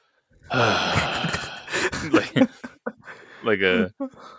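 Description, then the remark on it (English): A man imitates the heavy breathing that starts someone's online apology video: long, loud, breathy exhales with a few shorter huffs, ending in a brief voiced, gasping sound. “his breathing”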